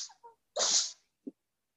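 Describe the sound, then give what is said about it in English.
A male dog with extra mucus and trouble breathing lets out a single sharp, breathy sneeze, preceded by a few small sniffs and followed by a soft snort. “oh, he's sneezing now. There you go, buddy.”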